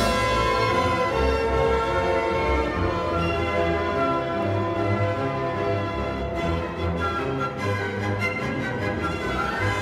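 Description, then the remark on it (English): Dense orchestral music plays steadily and loudly, with low, dark bell tones tolling through a thick layer of sustained strings and brass. No one speaks. “you hear those battle themes, and they're kind of like the dark bells of the Nibelheim flashback”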